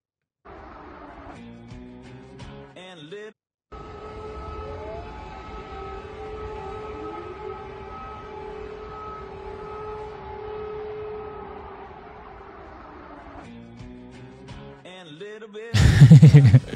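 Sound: air raid sirens wailing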